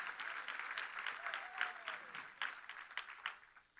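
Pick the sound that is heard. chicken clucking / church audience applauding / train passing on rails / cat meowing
church audience applauding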